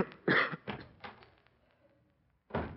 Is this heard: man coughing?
yes